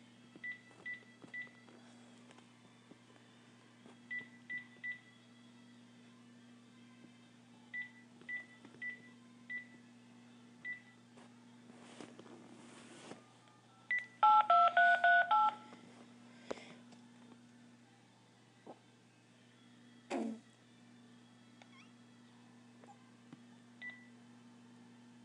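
Telephone dialing tones of a call being placed to a friend: a burst of rapid touch-tone beeps in the middle, after repeated short soft beeps, over a steady low hum with no one talking.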